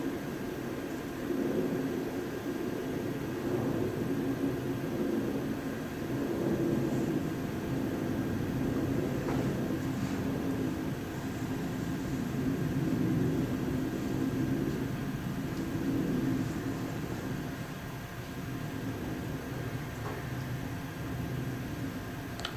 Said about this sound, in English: It's on that plane that's flying overhead right now, in the entire sky, through which the plane moves.